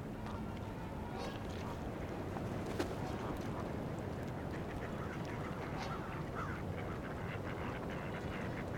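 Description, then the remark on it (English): Two male mallard ducks fight on a rocky beach, squabbling with scattered raspy quacks and splashes, set against a steady wash of water and outdoor noise, with other waterfowl such as Canada geese calling faintly. “Couple male mallards fighting right now.”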